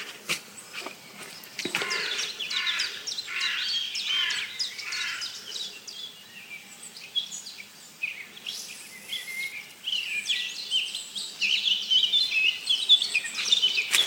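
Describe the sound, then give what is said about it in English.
A busy dawn chorus of warbling blackcap song, with rich fluting phrases overlapping from several birds, continuous and lively throughout with no talking. “But most of this bird song is black caps.”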